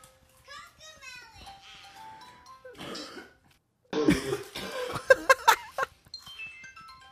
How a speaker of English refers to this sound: So this is 100% three-year-olds. It's so true. Coughing all over it.